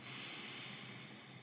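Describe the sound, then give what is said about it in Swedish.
A single long, deep breath drawn in through the nose, a steady airy hiss lasting about a second and a half, with no talking. “Jag ber er att börja den här podden, den här stunden när ni lyssnar, med att ta ett djupt andetag in genom näsan.”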